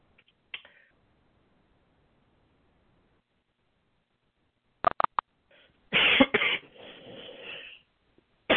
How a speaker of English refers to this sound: I am having a cough this morning. Yes, I'm finding that that's true when we do a lot of talking, that throats tend to dry out too, and that doesn't help allergies either.